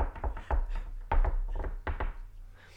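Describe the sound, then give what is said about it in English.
A man's wife knocks on a door, waiting to be let in, in several quick bursts of solid, hollow raps, pausing briefly between groups. The knocking is moderately loud, with no talking over it. “Is my wife not coming in or what? She's just right at the door.”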